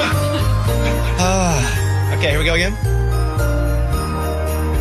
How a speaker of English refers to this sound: Can I get more chimes in my ear?